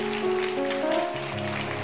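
A crowd claps steadily in a dense, rain-like wash of applause, with sustained low musical tones held underneath the whole time.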